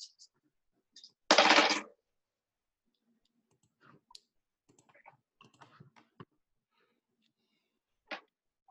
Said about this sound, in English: I'm going to use my actual dice this time.